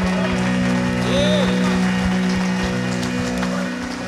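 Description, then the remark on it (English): A church audience claps their hands for Jesus Christ in a dense, steady wash of applause lasting several seconds, with sustained organ-like tones and a brief rising vocal note heard underneath. “Come on, give Jesus Christ a hand clap.”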